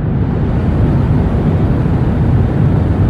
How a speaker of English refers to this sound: Turns out that the 80 or so decibels of white noise that are pounding your ears from the jet's engines, they reduce your ability to taste salt, reduce your ability to taste sweet, and increase your ability to detect and enjoy umami.